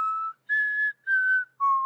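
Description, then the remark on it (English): Someone whistles a short four-note tune by drawing air inward, the clear tones fairly loud, separated by brief pauses, with no talking. “Inward whistling. That was what that was.”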